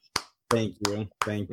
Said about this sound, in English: Well, I'm about to humble brag and say that as of yesterday, I was smoke-free for 7 years. Bravo, bravo. We'll give you a round of applause.